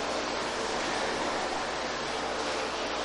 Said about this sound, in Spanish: En vano se le llama a, por ejemplo, el agua que está ahorita corriendo, que de la lluvia, ¿verdad? Que corre, ¿verdad? Va a dar a la coladera, ¿verdad? Va a dar a los drenajes, ¿sí?